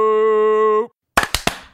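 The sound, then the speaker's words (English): A steady, buzzy sustained tone cuts off, and after a brief silence a group of hands claps together in unison, four sharp, loud smacks in quick, slightly uneven succession. “Dude, our synchronized clap, that was the best one I've ever seen in my life.”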